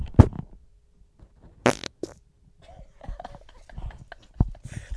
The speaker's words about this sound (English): I think I have a fart coming. Here we go. Listen out very carefully for this fart.